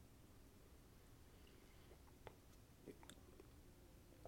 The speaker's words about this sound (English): Let me take a sip of coffee and I'll tell you about it.